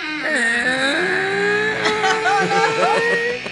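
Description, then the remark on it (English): A voice imitates a door creaking as it is opened, with a long, drawn-out, strained groan that wavers and bends in pitch, holding steady in loudness for several seconds. “It makes a bit of a creaking noise.”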